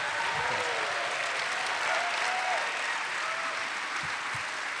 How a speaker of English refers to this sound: Everybody, please stand and cheer.